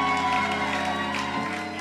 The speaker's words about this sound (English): Give the Lord a mighty clap offering. God bless you.